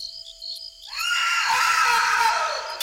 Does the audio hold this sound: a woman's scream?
yes